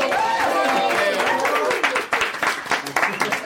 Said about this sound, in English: First of all, I want everybody to give a round of applause so they know we do actually have an audience tonight.